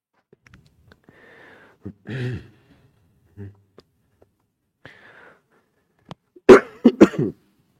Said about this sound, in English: So you got to bear with me. I have a little cough. I don't have COVID, so don't run away.